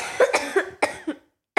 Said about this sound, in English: That's from smoke. I haven't even coughed yet. I be coughing. I smoke more than so many people. Yeah, I be coughing.